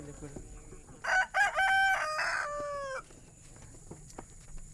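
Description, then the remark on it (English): A rooster crows once, a loud, drawn-out cock-a-doodle-doo lasting about two seconds, with faint farmyard clucking and rustling before and after, among chickens and hens being fed at The Neighbor's Field community garden in Comer, Georgia, on a hot Saturday afternoon. “is feeding her chickens, hens, goats, and ducks.”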